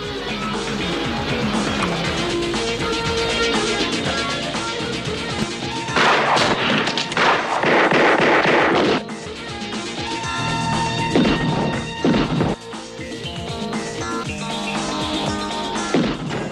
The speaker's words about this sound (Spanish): Bueno, pues como podéis oír, ahí se gastaba mucho plomo, muchas balas, muchos tiros. Pero bueno, era cosas propias de la serie en cuestión.